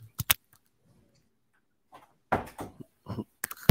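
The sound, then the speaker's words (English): A door is shut: a couple of sharp clicks, a pause, then a burst of rattling and scraping that ends in a solid, heavy thud as it closes. “I forgot to close my door.”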